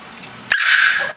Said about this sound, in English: Oh my gosh. What kind of dog is that?